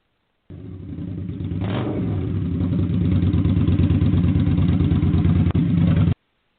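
A motorcycle with a sidecar roars steadily and loudly as it rounds a curve, its pitch rising slightly as it revs, with a brief dip near the end before the sound cuts off. No one speaks.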